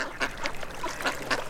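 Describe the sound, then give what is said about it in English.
Several pairs of mallard ducks paddling in the shallows and dunking their heads in the water for food, quacking in a steady, overlapping chatter of short nasal calls, moderately loud, with several birds calling in quick succession. “Several pairs of mallards paddle around the shallows, quacking companionably as they dunk their heads in the water looking for food.”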